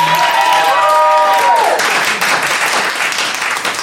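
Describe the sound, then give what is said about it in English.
An audience breaks into loud, sustained applause to vote that the audience should take the points for the round. Dense clapping holds steady for several seconds, with a brief vocal whoop or cheer rising above it at the start. “And if you believe the audience should pick up the points for this round, clap now.”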